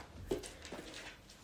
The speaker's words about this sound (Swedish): Jag frågar också, det är min hund som går här nu, så ni vet vad som låter.